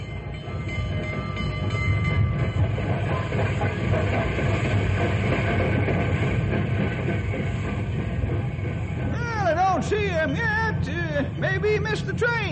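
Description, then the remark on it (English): A passenger train, the Fireball Express, rumbles in with a steady heavy roar and rhythmic rail clatter, then high squealing brakes wail and chirp as it slows near the end. “Boy, we got here just in time. Here comes the Fireball Express now.”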